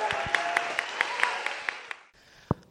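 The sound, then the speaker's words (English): A church audience applauds people celebrating their baptism on Baptism Sunday, in a dense, steady wash of clapping with sharp individual claps popping out, then it cuts off after about two seconds, followed by one last lone clap. “Another round of applause for your brilliant celebration.”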